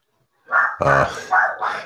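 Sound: dogs barking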